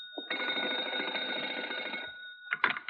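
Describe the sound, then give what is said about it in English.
An old-fashioned telephone bell rings loudly, a rapid metallic clatter lasting about two seconds, followed after a short pause by the start of another ring. No one speaks. “I found it out first when I tried the local telephone operator.”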